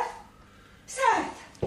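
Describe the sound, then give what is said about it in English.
A dog whimpers faintly, then gives one sharp, yelping bark that slides downward and fades, clear, followed by a brief thump at the end. “did the dog come past you?”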